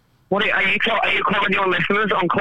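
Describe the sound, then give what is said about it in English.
The voice of a caller on a train comes through a muffled, tinny, low sample rate phone line, thin and band-limited with a crunchy, distorted edge, talking steadily after a brief moment of near silence. “now we have the small sample rate while you're on a train also trying to understand you.”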